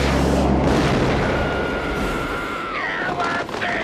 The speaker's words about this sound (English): Good thing I had the missile on cloak so nobody would see it hit the truck!